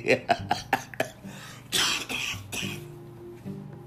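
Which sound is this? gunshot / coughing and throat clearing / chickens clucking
coughing and throat clearing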